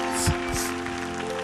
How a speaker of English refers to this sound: Give Jesus a hand clap as you're seated this morning.